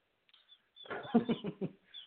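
Chickens cluck in the background in a short, uneven burst of throaty calls, fairly faint, with a few thin, high chirps drifting in before and after.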